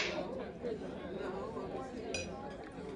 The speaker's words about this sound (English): So let's do this. A clink.